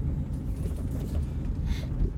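A steady, low truck engine rumble heard from inside the cab, droning evenly throughout with no talking, on a cold, frosty day of 22 degrees with wind of 20 to 30 miles an hour out of the west.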